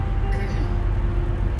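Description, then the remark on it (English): A truck with smelly exhaust drives past the speaker, its engine a loud, steady low drone with a faint humming tone layered on top throughout. “Excuse me, there's a truck with stinky gas driving past me.”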